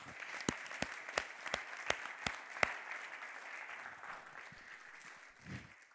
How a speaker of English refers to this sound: And yes, give the Lord a hand clap.